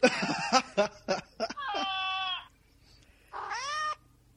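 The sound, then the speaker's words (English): A quick series of short cat meows and chirps, then two longer drawn-out meows separated by a brief pause, loud with a slightly electronic, played-back quality, played from a phone app. “You have 4 kitties living with you. You would think that would be enough meows going on.”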